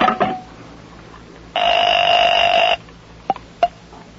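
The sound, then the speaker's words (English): A telephone in use: a quick rattle of dialing clicks, then one steady, bright ring lasting about a second, followed by two sharp clicks, with no one speaking. “I talked to Mr. Johnson on this phone.”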